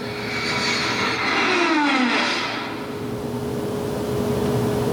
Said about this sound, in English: Enemy plane, sir? Impossible. No plane can fly that fast. That looked to me like it was from another planet.